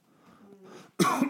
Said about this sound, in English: Excuse me. Coughed right in the mic.